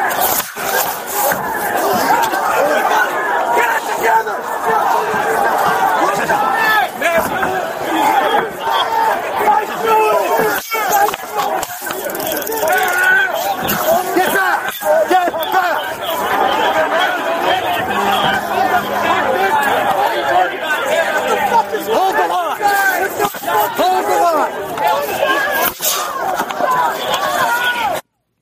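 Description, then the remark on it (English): A dense, agitated crowd of protesters shouting and yelling over one another, upset after a police officer tased a protester, sustained and loud throughout, with overlapping voices forming a chaotic roar of protest without pause. “And this, at that moment, really got the crowd upset.”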